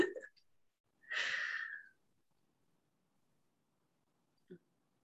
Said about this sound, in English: The breathing is very healthy.